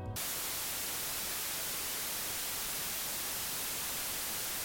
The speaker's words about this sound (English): White noise is a type of noise where equal power is produced at every frequency across the entire range of audible frequencies. It sounds like this.